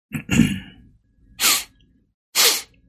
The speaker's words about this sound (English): Sorry guys, I didn't mean to sniff one to the mic.